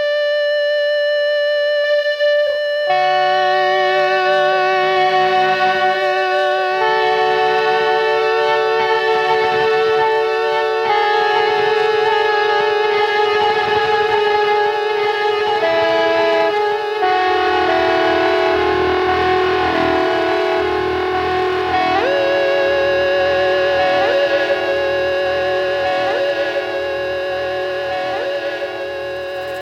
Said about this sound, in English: It's kind of cool. You can hear as the echoes are fading out, the delays are fading out, that it's getting crunchy and distorted. And that's because the delay is getting recorded over and over again with the tape deck.